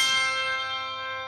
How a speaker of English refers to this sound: He found something that seemed perfect, a small factory located on a grassy hill in rural Pennsylvania. It made these. Handbells.